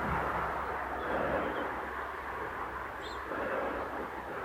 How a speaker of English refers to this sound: Ooh. Car on the road.